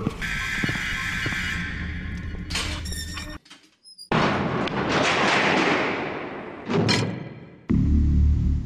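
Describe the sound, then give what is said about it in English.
A heavy door scrapes and squeaks, then shuts with a dull thud, followed by a brief hush and more loud rattling, grinding noise. No one speaks. “Still haven't addressed the door.”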